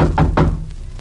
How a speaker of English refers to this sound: Knock again, Dagwood.